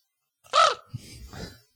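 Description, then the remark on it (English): A person imitates a raven: one loud, harsh caw that arches and bends downward, followed by a shorter, softer, raspy gurgling note. “Oh, you do a raven.”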